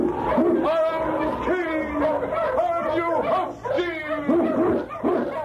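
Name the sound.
sled dog barking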